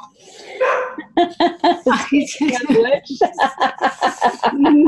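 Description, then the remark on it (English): A dog named Nugget barks in the background in a quick, steady series of sharp barks, about a dozen in a row, with a softer whine or vocal sound at the very start. “We have dog energy weighing in today.”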